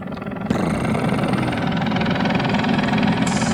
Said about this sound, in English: Airwolf intro. It's like helicopter from an intro. Like helicopters and shit, right? Yeah, Airwolf is a fucking pimp-ass helicopter, I guess.